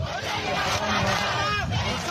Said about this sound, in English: This is one of the many chants heard during the early days of the protests on the streets of Khartoum, the capital of Sudan.